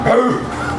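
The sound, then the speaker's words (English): A person's voice mimics a dog with one quick, rising howl, fairly loud, lasting under a second with no other talk. “gives a quick little howl.”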